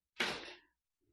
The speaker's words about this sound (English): He is here, very loudly bursting through the door.